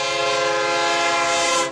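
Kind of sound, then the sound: vehicle, train passing with horn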